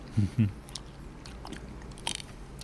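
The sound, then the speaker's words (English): Two quick crunchy bites into an ice cream novelty near the start, followed by softer chewing and faint mouth noises. “You hear that little crunch?”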